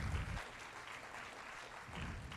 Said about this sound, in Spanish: ¿Cuánto dan un aplauso al Señor? Al nombre de Cristo sea la gloria.